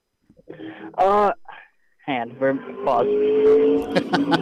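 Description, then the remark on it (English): Race car engines roar past on the track at New Smyrna Speedway, a loud rising whine followed by a sustained, droning snarl as more cars sweep by, filling the whole moment. “That was a nice little pause to let the engine noise go through.”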